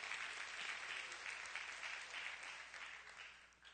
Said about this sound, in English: That's good right there. That's good right there. Come on, clap your hands. That's good right there.